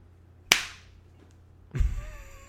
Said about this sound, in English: Why did you slap my face? I sometimes get confused between your hand and your face.